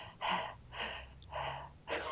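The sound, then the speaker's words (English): A voice imitates loud, heavy mouth breathing: four quick, airy breaths in a steady in-and-out rhythm, with no talking. “I also don't like mouth breathing either.”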